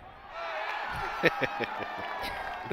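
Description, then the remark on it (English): A thin crowd at a World Series baseball game, heard in a replay, cheers and murmurs steadily, with a few sharp claps or shouts popping out over the sustained wash of voices; the cheering sounds sparse rather than roaring. “That was an accurate replay of that World Series. It was like 12 people in the crowd.”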